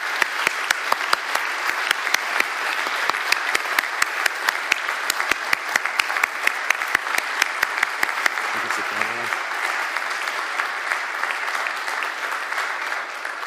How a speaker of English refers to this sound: So I'd ask them to come out. Please give them a warm round of applause as they come out and grab a seat here.